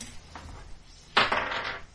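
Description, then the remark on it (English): A faint clatter near the start, then a sharp burst of hard, rattling clicks that tumble and settle over the next half second or so, like dice rolling across a hard surface. “Don't you feel good about rolling dice?”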